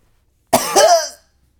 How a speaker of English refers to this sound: Sorry for that cough, ladies and gentlemen.